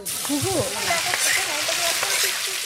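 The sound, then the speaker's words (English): Vegetables sizzle and crackle steadily in a hot wok-type pan set into the hole of a clay mound over a fire sunk into the ground, a continuous bright hiss, with faint murmuring voices underneath. “The pot for boiling the rice and the wok-type pans for cooking the vegetables fit perfectly into this hole, the correct distance from the heat.”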